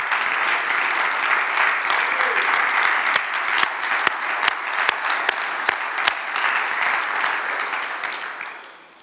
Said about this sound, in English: Come on, let's clap onto him.